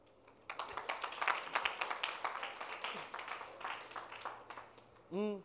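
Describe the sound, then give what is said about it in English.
A crowd claps steadily for about four seconds, dense and fairly loud, then the applause fades and a single voice lets out a short rising call at the end. “Clap for yourselves, you have vision.”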